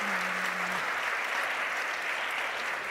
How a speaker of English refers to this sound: can we get a round of applause for these amazing women?